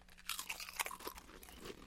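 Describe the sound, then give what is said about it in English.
Someone crunches on Pringles potato chips: a quick run of crisp, crackly bites and chews, irregular and bright-sounding, fairly quiet, with no talking. “Pringles, I will give them this. The softness can be nice sometimes.”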